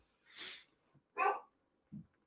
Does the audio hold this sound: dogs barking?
yes